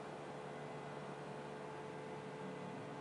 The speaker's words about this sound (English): Okay, I want you to imagine that for the last 7 days, you've heard two rumbling engines running nonstop, minimum 12 hours a day